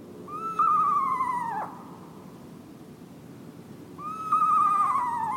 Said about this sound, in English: Sometimes, owls strike us as downright spooky. The spine-tingling call of an eastern screech owl is a case in point.